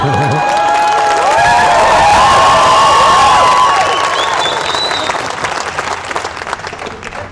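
A crowd bursts into sustained applause with whoops and high-pitched cheers rising over the clapping, loud, then the clapping gradually thins and fades, as the audience claps for each other.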